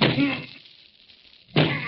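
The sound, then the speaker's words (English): Two heavy, muffled bangs on a locked closet door in a hotel room as someone locked inside tries to break it down, separated by a second or so of near silence, each loud blow ringing briefly before fading. “Jack is trying to break down the door.”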